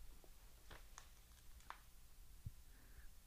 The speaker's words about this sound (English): I hear your heartbeat.